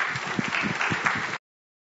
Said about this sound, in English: Please can you give our quiz team leaders a massive round of applause. They've been brilliant.